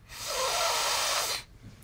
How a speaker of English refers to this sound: Give us a sniff. Sniff too hard. Sniff harder than you would.